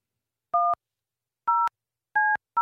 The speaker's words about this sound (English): Can we ever get these phones to work? No. Can't one room just have a normal phone? Yeah. I don't have to dial 9. And 1, then a code.